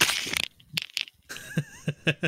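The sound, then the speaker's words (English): Loud rustling from fumbled headphones: a dense crinkly burst at the start, then a series of short, sharp scraping and crackling bumps, with a faint wavering whistle partway through. No one speaks. “Yep, and that was that loud rustling noise for a little bit.”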